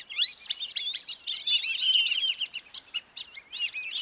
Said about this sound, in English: Late in the day, large flocks gather, then whistle their way overhead at sunset to nighttime feeding areas in fields or along the shore.